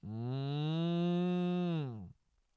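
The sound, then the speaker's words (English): A single long cow moo, steady and loud for about two seconds before dropping off at the end, heard alone with no talking and a quiet tail afterward. “It's what makes us different than fucking cows over here just looking.”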